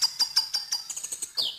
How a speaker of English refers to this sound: South Island Robin territorial call.